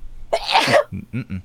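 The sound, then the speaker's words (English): One loud, explosive sneeze bursts out in a breathy rush of noise, followed by a couple of short, low voiced sounds from the person afterward. “You've run out of bless yous, by the way.”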